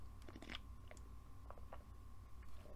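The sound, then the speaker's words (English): Someone sips ice cold water, with a few soft, wet mouth clicks and swallows in short bursts, all quiet against a steady low hum and a faint constant tone. No one speaks. “I'm going to take a sip of water really quick because I'm fucking ranting.”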